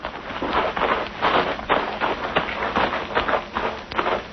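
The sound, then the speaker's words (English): Footsteps crunch steadily through the woods, a brisk, even rhythm of crisp, rustling steps on leaves and undergrowth, with no voices. “Easy on those footsteps.”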